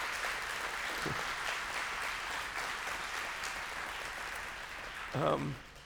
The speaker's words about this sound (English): Would you just give our police and our first responders a round of applause? Man, I thank you for them.